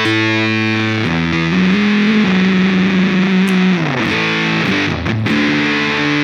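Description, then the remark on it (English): A heavily fuzzed electric guitar, played through a Jext Fox fuzz pedal, like a Fox Tone Machine, plays loud, sustained notes that slide and shift in pitch, thick and buzzy with a harsh saturated edge, with no talking. “One of my favorite fuzzes ever. Can you kill the fuzz or the octave on it?”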